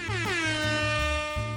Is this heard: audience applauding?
no